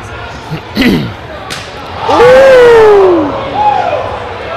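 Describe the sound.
Two sharp, hard slaps crack out close together, followed by a loud swell of crowd noise as spectators roar and a voice yells out in reaction.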